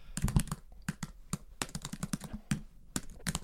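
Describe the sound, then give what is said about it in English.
Rapid, irregular clatter of computer keys being typed quickly, sharp clicky taps tumbling over one another in quick bursts with brief pauses, moderately loud and with no voices. “I'm a way faster typer than that.”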